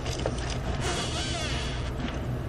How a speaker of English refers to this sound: That used a straw, but still made a weird noise.